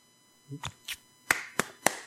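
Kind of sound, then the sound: human body sound, hand clapping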